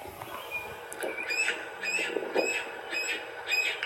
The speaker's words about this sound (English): this bird right here, which is the yellow-bellied sapsucker, is back